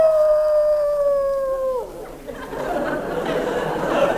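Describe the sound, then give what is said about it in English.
A single drawn-out dog howl holds a steady pitch for nearly two seconds, then slides downward and fades, leaving a rough, hissy background noise. “Oh, taking her dog for a walk.”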